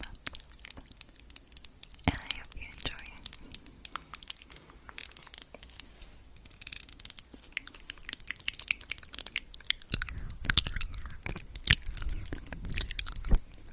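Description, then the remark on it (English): Close-miked ASMR chewing: wet, crunchy bites and smacking mouth sounds in an irregular stream, growing louder and denser toward the end, with no clear talking. “And this is the type of ASMR that has taken the world by storm and made some people very, very rich.”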